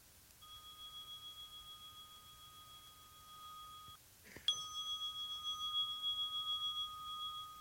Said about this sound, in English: Let us take a conscious and kind breath together. Going to ring the bell so that we can come out of our practice.